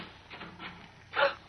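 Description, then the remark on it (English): The unlocked door of Barton's room, off a dimly lit corridor, opens at 3 a.m. with a short creaking scrape near the end, after a moment of faint background noise. Fairly quiet, with no voices. “Come on, the door's unlocked.”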